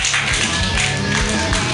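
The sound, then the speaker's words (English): An audience at the Mutiny comedy show claps and applauds steadily for a couple of seconds to welcome the next comedian, a dense wash of hands filling the room, with some music playing underneath. “Please clap your hands wildly”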